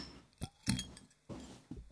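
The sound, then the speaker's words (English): A drink is poured from a freshly opened bottle into a glass: a couple of bright glassy clinks, then a short splashy burst of liquid and a final tap, with no voices. “What do you say we just crack it open, pour it out, give it a whirl?”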